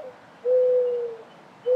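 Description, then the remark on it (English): Soft, steady cooing notes from a dove, a long sustained coo followed by the start of another, fairly clear over a faint background hiss. “Aphrodite, the goddess of love, favored doves.”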